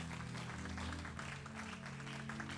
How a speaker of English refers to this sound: let's give the Lord a super clap offering.